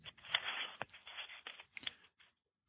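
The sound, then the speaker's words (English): Busy rustling and crinkling of lots of paper in irregular bursts with a few sharper scrapes, sounding thin over a phone line, then cutting off into silence as the caller hangs up the phone. “Rustling lots of papers before he hangs up the phone.”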